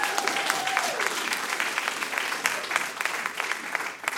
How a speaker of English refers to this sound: Big round of applause.